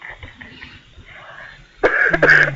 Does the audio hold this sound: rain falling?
no